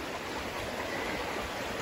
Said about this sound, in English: More wild rhododendrons. I really want to show you this waterfall, guys.